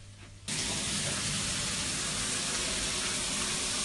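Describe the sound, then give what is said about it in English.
A shower in London bursts on after a brief quiet moment, then pours in a steady, loud hiss of running water with no voices. “Shower time.”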